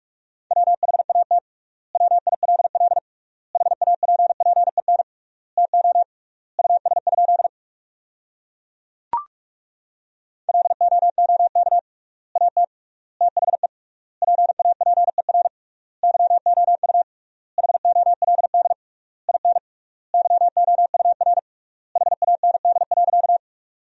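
A steady high-pitched Morse code tone keys out sentences built from the top 400 words at 45 words per minute, rapid bursts of dots and dashes with triple-length gaps between words, a brief click interrupting midway, no voices present.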